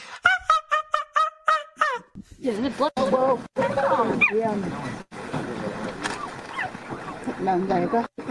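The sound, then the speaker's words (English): A cheetah gives a quick run of about seven high, bird-like chirps in a steady rhythm, followed by people talking over faint background noise. “What does the cheetah say?”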